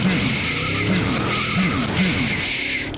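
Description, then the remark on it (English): A car roars past in a drive-by with tires squealing, a loud, continuous engine growl and high-pitched screeching skids rising and falling over a few seconds, with no talking. “Now, the fellow's got to clear out quick because there's a car right up the street, and he's ready to go for a drive-by.”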